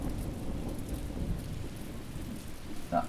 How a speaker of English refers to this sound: Is that rain? Yes, I'm afraid it is. Quite lovely, isn't it? Is it? The rain? Yes. Yes, quite lovely.